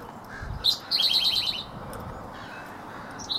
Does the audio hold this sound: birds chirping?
yes